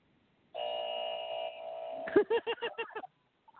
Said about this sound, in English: I remember that buzzer. Was that? That was from the battle rap, right?